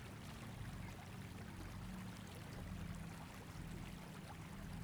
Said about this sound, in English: And here we will sit under this waterfall, focusing on our breath and the waterfall's healing energy.